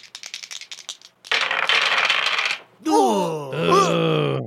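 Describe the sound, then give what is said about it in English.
A quick series of clicks as three dice rattle together, then a steady clattering roll across a hard surface, followed by a drawn-out vocal exclamation. “Three dice. Roll, here we go.”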